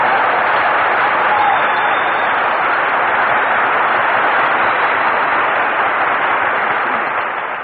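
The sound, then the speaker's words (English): A loud, steady wash of applause from a studio audience as Phil Harris makes his entrance on a radio broadcast from a new place, many hands clapping densely and continuously for several seconds with no voices on top. “Say, Phil, why is it every time we broadcast from a new place, you always make your entrance by asking for applause?”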